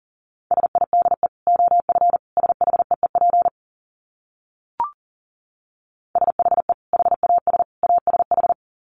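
Fast Morse code at about 40 words per minute: a single steady mid-pitched tone keyed into quick dits and dahs, sent in two bursts separated by a pause with a brief click.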